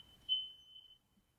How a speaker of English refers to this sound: See, the gods have ding-a-linged. The bell, Madame Leota's bell has rung, saying that you should go shop on Zulily.